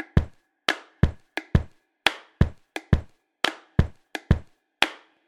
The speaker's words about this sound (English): So here's the book noise with a little bit of me stomping on the floor as well, layered in.